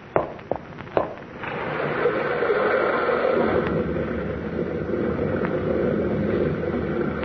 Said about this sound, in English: Sounded like a rock slide.